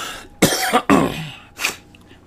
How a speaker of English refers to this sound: excuse me, had to clear my throat there.